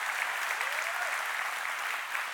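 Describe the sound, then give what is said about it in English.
A crowd at Seacoast applauds steadily to welcome a speaker as he comes, a dense wash of clapping that stays loud and even throughout, with a faint whistle or cheer rising briefly in the middle. “Let's cheer him on. Let's give him a great big Seacoast welcome as he comes.”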